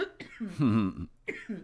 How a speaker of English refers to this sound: Weed cough.